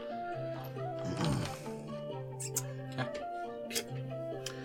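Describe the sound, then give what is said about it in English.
Dice rolled for a stealth check clatter across a table in a brief rattling burst, followed by a few sharp, separate clicks, all over a steady background of sustained musical tones. “So many dice.”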